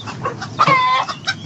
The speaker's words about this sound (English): Oh, there's my chicken. Look at the chicken. Oh, chicken. My chicken is nice, too. You want a pet chicken?